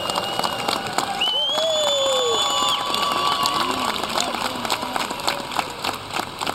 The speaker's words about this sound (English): Reed Ryan has been a major factor in putting this whole traditional emphasis together. And coming up, as he has done through a baseball family, yes, he deserves your applause.